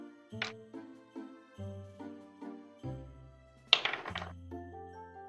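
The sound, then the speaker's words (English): Pink dice clatter briefly in two short bursts, the second louder and rattling for a moment, over soft, steady tonal notes playing in the background. No one speaks. “What dice have I not used tonight? Let me try the pink ones.”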